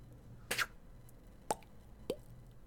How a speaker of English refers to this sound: A swish, followed by a plop, as if a fish had disturbed the still surface of the water.